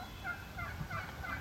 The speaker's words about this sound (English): There's two. I know those are the gobblers.